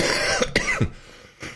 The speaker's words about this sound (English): Excuse me. You okay? Yeah. Get a cough button.